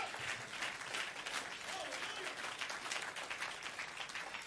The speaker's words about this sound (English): Can we clap our hands for these great men of God?